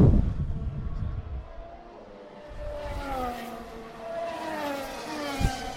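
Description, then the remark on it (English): High-pitched engine whines from race cars rise and fall as several cars speed past at turn 4 of a Grand Prix circuit, layered over a steady low rumble of trackside noise. A brief thump near the end. “The cars are fast.”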